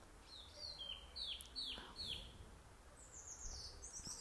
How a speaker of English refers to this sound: And lovely to hear the birds.